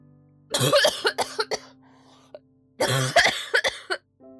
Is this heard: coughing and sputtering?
yes